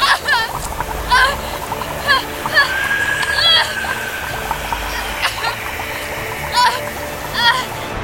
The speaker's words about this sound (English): The water returned in a fury, but something was different. The water was black, as black as the waters at the bottom of the quarry. The bathtub quickly filled to the brim, and the black water oozed onto the tiled floor. It boiled violently.